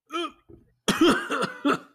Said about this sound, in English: He can barely hold it in and coughs.